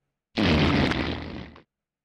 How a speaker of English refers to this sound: So this, well, I'll just play it first. Say it. That's epic fart. I know where that comes from. Because I can do that on command.